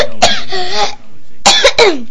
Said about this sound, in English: You gotta quit smoking. Hey, Dad. That's a bad cough, you alright?